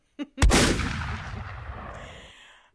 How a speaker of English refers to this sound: That's so, a gunshot. That's a gunshot.